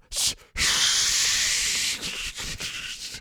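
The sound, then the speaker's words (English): A toilet flushes in a restroom: a short hiss, then a loud rushing, hissing whoosh of water that holds steady for over a second before weakening into uneven, sputtering gurgles. No one speaks. “was that a toilet? I heard flushing. Yeah, that was a toilet.”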